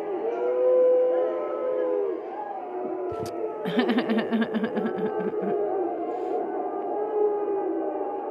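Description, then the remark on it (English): A large crowd at a game in South Carolina boos Donald Trump steadily, a sustained, wavering drone of many voices, with a burst of rapid clattering claps rising over it midway before the booing carries on. “Trader Trump, seen here in his true form, was apparently booed at a game in South Carolina this evening.”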